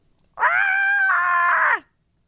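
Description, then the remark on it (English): A goat lets out a single loud, drawn-out scream, a harsh and strongly voiced bleat lasting over a second that wavers midway and drops in pitch at the end. “The goat.”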